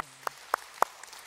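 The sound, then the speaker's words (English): Three sharp, evenly spaced hand claps ring out, followed by a fainter fourth, a sparse start of a church audience clapping for its own generosity in giving, with no voices over it. “The generosity that was demonstrated, we'll clap for that.”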